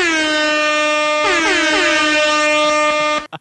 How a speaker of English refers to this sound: Give yourself the air horn, slick, bro.